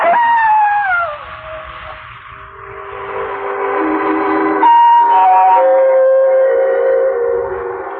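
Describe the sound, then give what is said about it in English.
A distant jackal howls at night in long, wailing cries. An opening call slides downward in pitch, then several high, sustained, overlapping howls waver on steadily with no one speaking. “I must admit that the howling of the distant jackal even made me nervous.”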